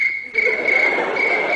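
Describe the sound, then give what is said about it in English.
Bill Hicks imitates a cricket with his lips, producing a steady, shrill chirping trill that stays loud throughout, with a soft breathy rasp underneath. “I have to say, that cricket noise that he does is really good.”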